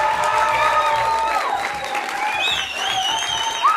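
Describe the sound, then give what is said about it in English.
Sustained applause from a live studio audience at a radio broadcast on campus at Goldey-Beacom College, a dense steady wash of clapping at an even loudness, with a few higher whoops and cheers rising above it near the end. “Thank you so much for the applause and the warm welcome.”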